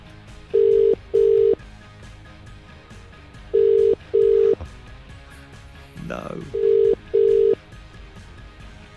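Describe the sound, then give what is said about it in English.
An outgoing call's ringback tone sounds three times, each a pair of short steady electronic beeps with gaps between, clear, while a voice briefly murmurs in the background. “If your phone's ringing, get to it.”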